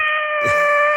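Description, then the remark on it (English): A single drawn-out cat meow, loud, held at a steady pitch for about a second with no one talking. “Oh, it's my cat.”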